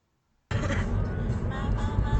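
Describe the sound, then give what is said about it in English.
After a half-second of silence, a steady rumble of road and engine noise from inside a moving car on its way to VB kicks in abruptly and continues evenly, heavy in the low end. “we're in a car, and we're on our way to VB.”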